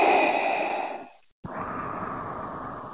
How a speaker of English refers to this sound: Otherwise, you'll just be breathing heavily into your microphone.